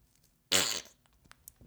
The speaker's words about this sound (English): And scene. Anytime you can end a scene on a fart, yeah, that's another t-shirt for you. Gold. Gold.